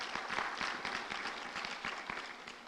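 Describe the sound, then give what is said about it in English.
An audience breaks into steady applause to thank their pastor, many hands clapping together in a dense, even wash of sharp claps that holds at a moderate level for a few seconds without any talking. “You can clap for that.”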